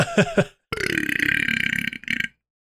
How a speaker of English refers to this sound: That was the weakest burp that I've had ever. Yeah, that was bullshit.